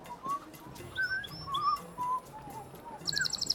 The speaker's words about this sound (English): Cheep, cheep, cheep, cheep, cheep. Yeah, the bird is just happy as can be in its cage in proximity to the four of us.